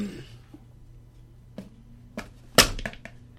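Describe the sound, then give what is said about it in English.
A voice imitates glass shattering with harsh, hissing bursts: a couple of smaller crackles, then one loud, sharp crash followed by a few trailing breathy fragments. “I said break, not freaking shatter. So it's gonna like glass.”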